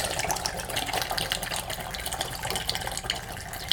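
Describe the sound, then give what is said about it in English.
Used photographic bleach from film processing is dumped back into its bottle for reuse in a steady, splashing stream of liquid, fairly loud, continuing for a few seconds with no voices over it. “So let me dump my bleach.”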